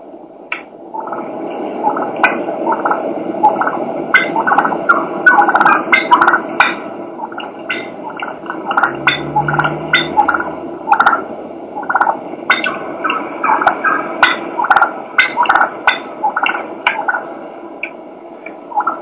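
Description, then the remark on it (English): A wild turkey hen clucks and purrs steadily for about twenty seconds as she comes in to decoys: a stream of quick clucks over a soft, rolling purr, with no talking. “This is a hen just clucking and purring.”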